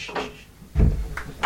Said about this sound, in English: Yeah, I'll shut the door.